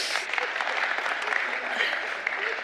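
Steady applause from an audience for a volunteer, a dense wash of many hands clapping at an even level throughout with no voices standing out.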